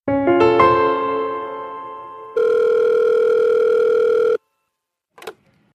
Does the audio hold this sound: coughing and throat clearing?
no